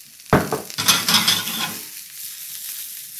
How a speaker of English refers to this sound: Right, they're going along nicely. I'm going to pop the asparagus in. Maybe a touch more oil just to get that sizzle back.